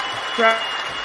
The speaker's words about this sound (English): Wait. All that applause. We got to get this in, too.